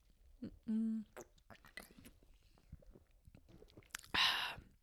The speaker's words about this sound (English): Let's go ahead and take a quick sip before we dive in.